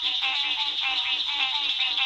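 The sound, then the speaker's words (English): A dense chorus of frogs calling together in a large pond in Florida's Apalachicola National Forest on the Gulf Coast, a steady high-pitched trilling wash with rhythmic pulsing croaks underneath, continuous and fairly loud with no voices. “We leave you this week along the Gulf Coast with a symphony of frogs.”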